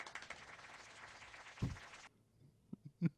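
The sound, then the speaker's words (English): A few sharp pops of bubbles bursting at irregular intervals, the first over a steady hiss that then cuts off, leaving two quick pops in near silence. “Hold on, let me pop all these bubbles real quick.”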